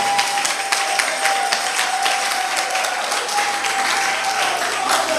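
An audience claps together in a dense, continuous wash of applause that holds steady at a fairly loud level throughout, with a faint sustained tone running underneath.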